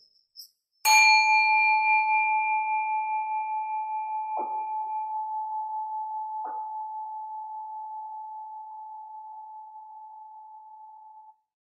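A single meditation bell is struck once to begin a meditation at a meditation center in Redwood City, California, ringing out with a clear, pure tone that hangs in the air and slowly fades over many seconds, with a few faint clicks in the quiet.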